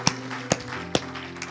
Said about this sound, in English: Everyone said amen. Give the Lord a hand clap and a shout. Hallelujah.